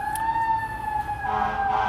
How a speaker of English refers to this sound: Hopefully, someone's not that bad. You know, anytime you hear a siren, you know, either someone's getting rushed to the hospital, having to go to the hospital, something's going on. So, you know, Lord, we pray for whoever that is.